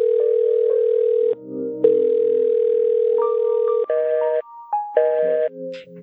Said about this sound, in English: Wait a minute. Is that a phone? Is that a phone that's ringing? Or is it? Oh, yeah, it is. It is.